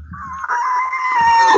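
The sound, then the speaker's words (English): A person imitates, with their voice, a bull elk's call of the kind a bull gives when around cows: one short, high, whistling squeal lasting under two seconds that holds its pitch and swells slightly louder toward the end, with no talking. “But when a bull's around cows like that, a lot of times you'll hear him just kind of give those.”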